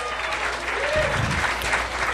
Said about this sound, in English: Where are you guys? Ah, hi! Come on, a round of applause for those guys.